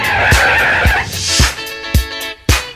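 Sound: car tires skidding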